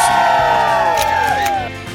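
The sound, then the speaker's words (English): The crowd on the plaza of the Today show in New York cheers loudly and continuously on a Monday morning, with high, sliding whoops and shouts rising over the din for a couple of seconds before it starts to fade slightly. “Our crowd is raucous.”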